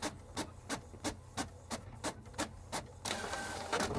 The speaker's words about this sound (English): You just wasted two bars there with the printer noise.